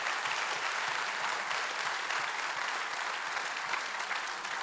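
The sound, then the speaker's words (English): An audience claps steadily for several seconds in applause for God, a dense, even wash of hand claps with no voices rising above it. “Can you just give him applause for that?”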